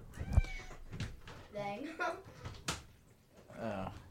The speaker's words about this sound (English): Meow. Yeah, we heard him meow before. Oh, he's all wet from the rain.